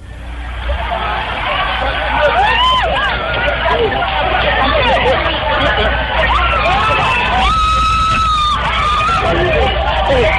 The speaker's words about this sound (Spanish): en Abiyán, en Costa de Marfil, es una región que pertenece a este lugar, miles de personas fueron testigo de un fenómeno muy, muy extraño, pero quiero que primero escuchen cómo la gente gritaba al ver este fenómeno, que ya les cuento qué puede ser.